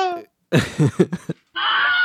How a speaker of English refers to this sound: Bunch of Wilhelm screams.